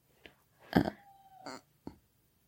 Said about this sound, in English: I apologize, guys. You're going to hear a dog crying.